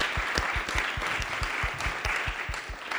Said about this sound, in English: So thank you very much to the organizers. I just want to give them another round of applause, please, for putting together tonight's event.